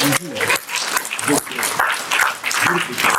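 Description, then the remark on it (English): A crowd applauds a young man steadily and loudly throughout, a dense wash of clapping mixed with scattered cheers and voices calling out. “I want you to stand up and tell us your name, because he really deserves a round of applause.”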